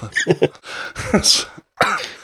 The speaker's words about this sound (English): I'm gonna be coughing all through the show and everything.